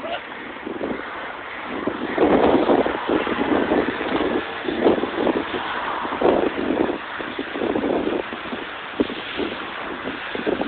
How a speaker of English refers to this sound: Kinda sorta, it's a little windy. Umbrellas can get a little tricky in the wind. And I hope the car noise isn't too much too. It's really loud on the street right now.